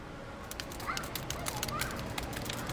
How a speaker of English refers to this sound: Some of the pieces were too fragile, and more were behind glass, but these were available. I got you some tippy taps from a telegraph machine.